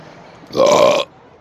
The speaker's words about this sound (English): As you can tell by my belching.